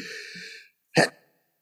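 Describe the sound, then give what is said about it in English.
A single sharp sneeze, following a drawn-out, breathy intake of air, then quiet. “Bless you”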